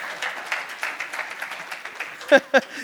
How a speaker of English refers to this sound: I just want to, yeah, you can give the Lord a big hand clap for that.